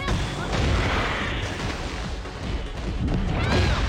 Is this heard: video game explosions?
yes